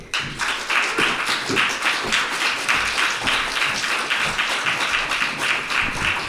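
An audience applauding to welcome the first act of the night, steady dense clapping that fills the space for several seconds without letting up, loud, with no one speaking over it.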